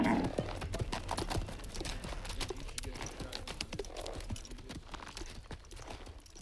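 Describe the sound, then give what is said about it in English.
A mule being turned around clip-clops steadily over hard ground, a quick run of sharp, hollow knocks in an uneven walking rhythm that continues for several seconds at a moderate level with no voices. “I swallowed my rage and turned the mule around.”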